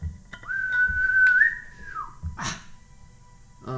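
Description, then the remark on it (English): A single sustained whistle holds a steady pitch for about a second and a half, then bends downward and fades, followed by a brief breathy burst, with low background rumble throughout. “that whistling sound again, and from your druidic, it says, come.”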